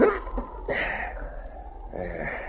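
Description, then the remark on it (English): Sled dogs, huskies with a dog named King, yelp and whimper in a few short, overlapping bursts over a steady low rumble as they are got up to pull, moderately loud, with no one speaking. “Get the dogs up, fella. On, King! On, you husky!”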